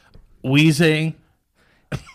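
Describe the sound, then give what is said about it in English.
A man's voice imitates the Pokémon Weezing with a raspy, wheezing smoker's cough: one loud, strained, drawn-out burst, followed after a short pause by a brief breathy rasp. “I remember coughing. Coughing. Weezing. Sound like my fucking uncle.”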